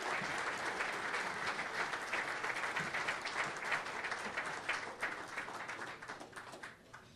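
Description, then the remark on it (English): An audience at the New Canaan Society applauds steadily to welcome a speaker to the platform, with dense, crackling clapping that holds strong for several seconds, then thins and tapers off toward the end. “It's getting harder and harder to get to the platform before the applause stops.”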